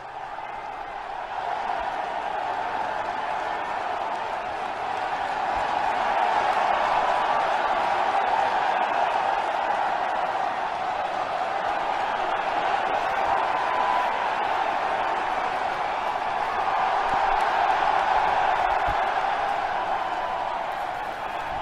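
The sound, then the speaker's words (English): A large stadium crowd at the Army-Navy game roars with applause and cheering for President Trump, a dense, steady wash of noise that swells slightly at times and keeps going for about twenty seconds without a break. “I mean, I would tell you that many, many people at the game commented that the applause for President Trump was thunderous.”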